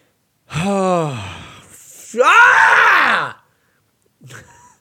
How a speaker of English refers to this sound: And that really is the sound of this crisis, isn't it, guys? You're happy and then you're sad and then you're screaming alone in your room.